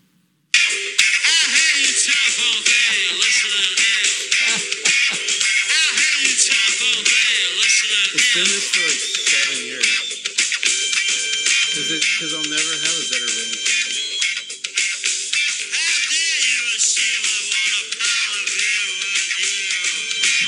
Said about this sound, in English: You know what my phone, my ringtone is, by the way, right?